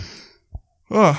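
A close, drawn-out yawn: a breathy exhale, a brief soft knock, then a loud voiced groan with wavering pitch that ends the short clip. No words are spoken.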